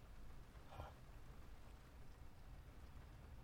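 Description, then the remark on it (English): Soft, steady rain patters as a continuous hiss, with a low rumble underneath and one brief brighter splash near the start; no voices. Rain falling on a cliffside parking lot above El Matador Beach. “Okay, so we're sitting here on a rainy cliffside parking lot above El Matador Beach. But the rain is not quite as bad as it was, so maybe we could walk down and see what's there.”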